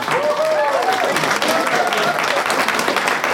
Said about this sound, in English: Can we have a big round of applause for the Rising Tide people?